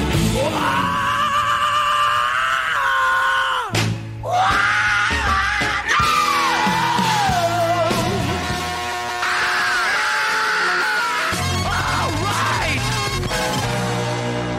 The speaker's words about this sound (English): Can you name these lead singers doing famous screams?